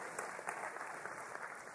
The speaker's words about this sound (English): Y'all give our assistant a great round of applause.